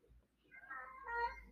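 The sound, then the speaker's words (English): A cat meows in a drawn-out, wavering cry lasting over a second, moderately loud, with a low hum underneath and no talking. “My cat's fucking crying because she messaged me.”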